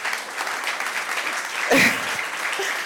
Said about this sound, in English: I think he deserves a bigger round of applause than that.